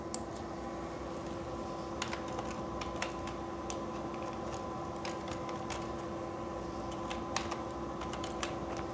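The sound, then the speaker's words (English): Quiet, irregular keystrokes on a computer keyboard as someone types a URL for a website landing page, a short burst of clicking typing over a steady low electrical hum, with no one speaking. “After selecting, you have to write your appropriate URL here.”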